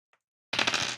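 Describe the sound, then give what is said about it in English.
A single faint click, then a loud half-second rattle of dice tumbling and clattering across a hard tabletop, with no voices. “I rolled the wrong dice.”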